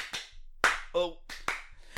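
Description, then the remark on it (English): Several sharp hand claps in an uneven rhythm, about five or six in two seconds, with a short voiced sound breaking in between them. “Clap, clap.”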